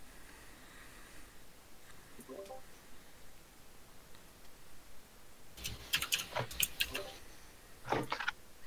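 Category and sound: household object, typing on a keyboard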